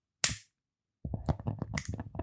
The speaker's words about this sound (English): You don't want to pour any out, but just get the rum right to the edge and then light it. Let's see if we can hear the flames.